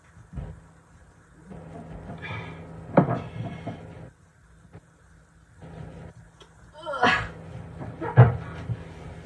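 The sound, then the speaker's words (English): Dishes and cupboard doors clatter in scattered bursts as someone does the dishes and cleans out the sink, with a few sharp knocks and bangs between quieter stretches, over a steady low hum. “Doing dishes and everything, just getting everything cleaned up.”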